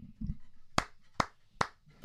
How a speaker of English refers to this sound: I just kept clapping.